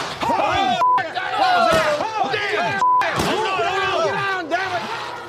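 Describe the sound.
Several voices scream and shout over one another in rising and falling wails, broken by a few sharp, loud gunshots that cut through the constant yelling.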